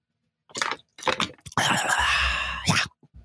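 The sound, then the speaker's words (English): A few crinkly clicks, like a plastic bottle being handled and opened, followed by a steady stretch of someone drinking water, swallowing noisily with no talking. “Oh, I need some water.”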